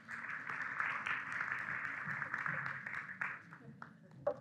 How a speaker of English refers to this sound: I want you to, you can applaud when they come up, but then do a golf clap when they come up. And then after they're all here, we'll have you give a big clap, okay?